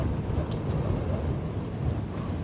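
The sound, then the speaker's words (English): A heavy rain and hail storm roars steadily, a dense unbroken wash of pounding drops with a deep rumbling undertone and no voices. “I squeezed Harris's hand tightly and shut my eyes against the rain and hail.”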